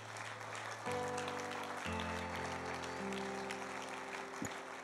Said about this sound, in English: He's going to help you out, give you something from the church, and they're going to give you a hand clap as you follow him down the center aisle.